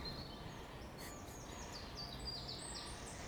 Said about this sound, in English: Yeah, it's a nice church bell. Moorhen. It's loud, isn't it?